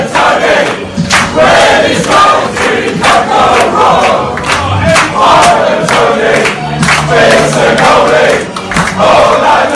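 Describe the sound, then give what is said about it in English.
A crowd cheers and shouts together, loud and sustained for the whole stretch, with repeated bursts of voices swelling over a dense roar of overlapping yells. “We're going to say our usual end of Besotted podcast scene where we give the cheers.”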